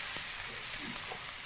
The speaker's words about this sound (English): Oh my god, can you finish browning the chicken? Finish browning the chicken. I'm browning, bro. Do we need more oil?